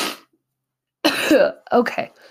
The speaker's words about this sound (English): Okay. Enough coughing and drainage and things.